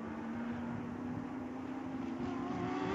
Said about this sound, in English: So that battle continues to rage, as does this one. And these guys have been locked like this for the last several laps, down into that heavy, heavy braking in the anti-lock brakes there into 10A.